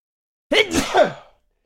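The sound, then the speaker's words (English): A single loud, powerful sneeze, a sharp voiced burst that trails off in under a second, with no talking around it. “Bless you.”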